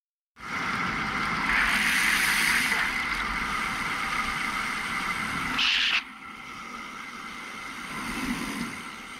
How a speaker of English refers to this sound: Then you'll hear one car go by.